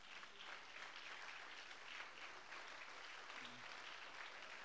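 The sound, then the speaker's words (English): A crowd claps steadily for several seconds, a dense, continuous patter of many hands with no break, filling the whole stretch at an even loudness, answering a call to clap their hands if they believe. “If you believe that today, would you clap your hands?”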